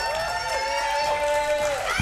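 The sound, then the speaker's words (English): The crowd at the Movie Trivia Schmodown cheers and hollers steadily for about two seconds, a loud, throaty wash of overlapping voices with sustained shouts rising and falling, no clear words. “Throaty crowd here today.”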